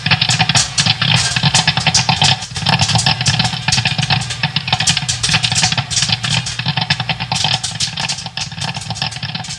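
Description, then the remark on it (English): A loud, dense buzzing of bees fills the whole stretch, a steady droning swarm with rapid fluttering pulses and no voices. “Bees, bees, yep.”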